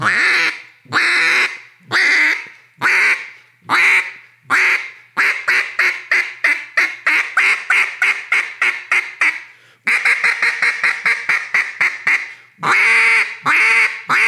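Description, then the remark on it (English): A short-reed goose call blown in a fast series of honking notes, the caller breathing after every note to build up air, first a few spaced blasts, then rapid rhythmic bursts with a brief pause midway. Loud, no voices. “You can trick people by, you know, especially on a short re-goose call of how many notes can you get on one breath.”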